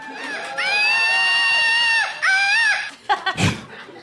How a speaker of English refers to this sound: And once you catch this thing, it's like a curse. You will have a screaming monkey in your life from now on.